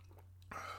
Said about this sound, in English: Yeah. It's nothing like a nice sip of red wine. The wine, in case you're interested in what I am drinking, the wine's called Black Ink.